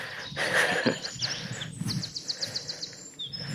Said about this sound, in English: Two wrens fighting.